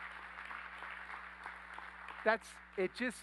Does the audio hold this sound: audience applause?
yes